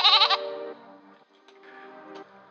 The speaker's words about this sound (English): and what are they doing here? It's the twins. It's my two little goats, Solomon and Sonia.